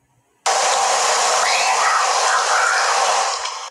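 An eerie, whistly whisper: a loud, breathy hiss cuts in abruptly and holds steady for about three seconds, faint wavering whistle-like tones drifting inside it before it fades out.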